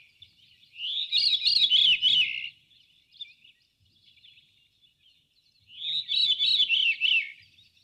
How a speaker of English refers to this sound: Both the transition and the theme itself are from the call of the veery, also known as Wilson's thrush. This is the veery, his natural call.